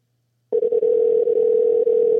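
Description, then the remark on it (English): A steady telephone dial tone on a phone that is not working starts abruptly after a brief silence and drones on unbroken at an even, fairly loud level, with no voices. “Your phone is not working.”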